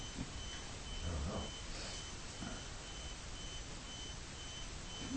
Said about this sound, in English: Maybe it's the alarm telling us that if you didn't notice the light going off.